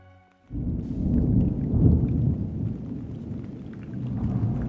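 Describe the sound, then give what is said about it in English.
Steady rain pours down after a brief quiet start, with a deep, rolling rumble of thunder swelling underneath and lingering throughout, loud with no voices. “Rain fell from the darkened sky above”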